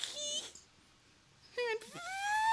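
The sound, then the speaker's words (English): A voice imitates the squeak of skin dragged across a kitchen floor with two high, whiny vocal bursts, the second rising and sliding into a long, strained tone, separated by a brief quiet gap. “And you actually could hear squeaked.”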